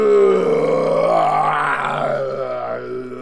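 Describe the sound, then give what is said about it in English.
A voice imitates the snoring of a giant creature with one long, loud, rumbling groan that rises in pitch, then sinks back down in a drawn-out, throaty drone. “Yeah, you hear this snoring.”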